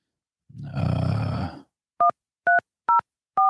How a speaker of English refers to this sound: This show feels so professional when I dial, like that beeping sound.